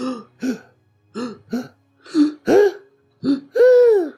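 A run of short, sharp vocal hiccups, fairly loud, about eight jerky bursts in irregular pairs, the last few stretched into voiced, groaning sounds.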